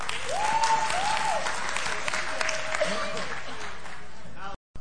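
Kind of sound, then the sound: crowd, audience clapping in unison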